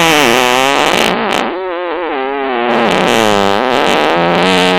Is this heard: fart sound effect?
yes